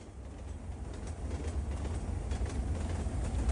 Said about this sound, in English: It's a train.